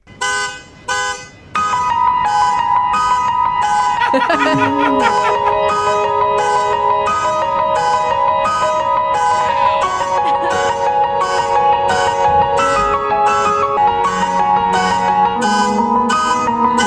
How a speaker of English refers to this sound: Let's listen to the sound of a professional keyboard player who had a car alarm going off outside his apartment, and he turned it into a beautiful song.